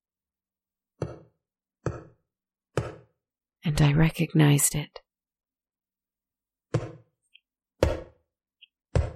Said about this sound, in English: That tapping came faster and more steady.